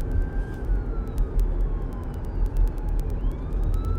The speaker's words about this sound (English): And there's an ambulance coming by.